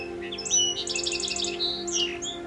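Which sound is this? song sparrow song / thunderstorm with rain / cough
song sparrow song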